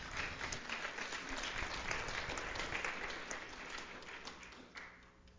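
A crowd at a church service applauds the moms, many hands clapping in a dense, sustained patter, tapering slightly toward the end.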